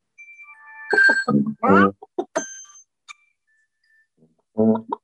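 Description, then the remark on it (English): A Google Assistant smart speaker's chicken timer alarm sounds bright, bell-like electronic chimes in short bursts, clear, with a brief synthesized voice announcing the chicken timer is up and a pause before the chime returns. “All right, our timer ought to be going off here and then we'll continue. Your chicken timer is up.”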